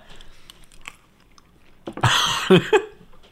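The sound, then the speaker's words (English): Chewing of Skittles candies: faint clicks and soft munching at first, then a louder burst of crunchy, wet mastication with a brief muffled vocal sound near the end. “It's scary, and then once you find out it's just a good Skittle, I'm in hog heaven.”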